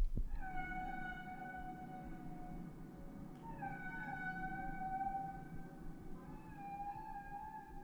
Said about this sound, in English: Roger Payne introduced us to the Symphony of the Sea back in 1970 with …. It became the most popular nature recording in history.